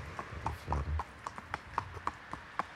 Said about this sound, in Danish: Wow, der kommer heste her. Godmorgen.